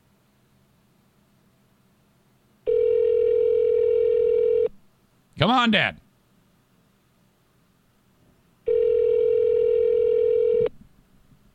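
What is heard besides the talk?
telephone ringback tone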